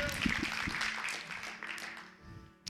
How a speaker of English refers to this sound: Come on, somebody clap for joy.